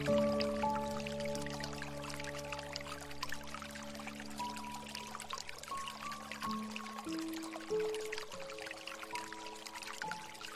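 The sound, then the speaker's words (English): Gentle running water trickles and burbles steadily throughout, blended with soft, sustained piano notes drifting slowly over it; no one speaks. “Picture yourself in a serene setting, surrounded by the gentle murmur of flowing water and the enchanting melodies of the piano.”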